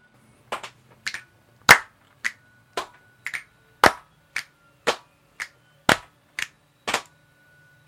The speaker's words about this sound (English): Ha, that was a clap, motherfucker.